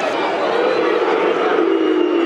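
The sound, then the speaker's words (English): A football crowd at the Den in South Bermondsey voices its disapproval of the number seven player in a loud, sustained roar of jeers and boos. The dense wall of voices holds steady with no pauses for the whole stretch. “The crowd don't like the seven now.”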